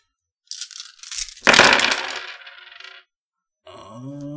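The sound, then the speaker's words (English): A few light clicks, then a loud burst of dice clattering and tumbling across a table for about a second and a half before settling; a voice starts speaking afterward. “So he is going to spend 7 of his dice defending against this.”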